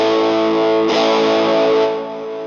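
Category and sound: distorted electric guitar playing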